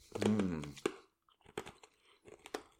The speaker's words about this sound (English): I'm giving it a crunch. Give it a crunch.